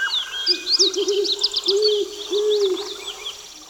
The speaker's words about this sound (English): Can you do the sounds of the woods? Yes. So sorry, Ross. Here's the woods.